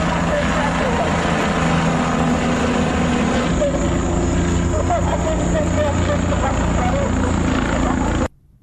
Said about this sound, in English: So this manhunt is important. That's why the police decided to call his mom and have her broadcasting from a helicopter. Give yourself up. I'm not kidding.